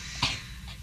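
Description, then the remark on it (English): A sharp, breathy cough bursts out, followed a moment later by a second, softer one, against a quiet background with no talking. “He's having a coughing fit.”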